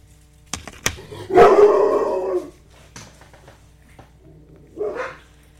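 A dog gives a loud, drawn-out bark-like cry after a couple of sharp clicks, then a shorter, quieter yelp follows a few seconds later, with no talking.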